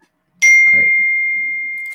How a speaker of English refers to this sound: I think someone's notifications